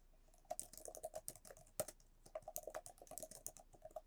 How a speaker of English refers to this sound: Pause while I add this onto our podcast movie list so I don't forget. But please enjoy the sound of me typing.